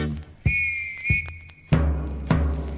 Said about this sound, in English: He's got a whistle. Well, that's true, actually. You can't get those whistles just about anywhere.